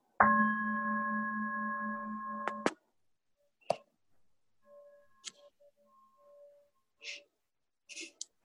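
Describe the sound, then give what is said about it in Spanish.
A meditation bell rings as a steady, bright tone with several layered overtones for about two and a half seconds, then stops abruptly, followed by a few scattered clicks and faint short tones. “Este es nuestro primer reto, que descanse la atención todo lo largo del sonido de la campana.”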